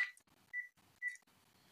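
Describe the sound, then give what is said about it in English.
A telephone rings with an incoming spam call, an electronic warble of three short high-pitched tone bursts in a quick, even rhythm. The ring is fairly soft, and no one speaks over it. “excuse me, we get spam phone calls all the time. Let me see if I can stop it from ringing.”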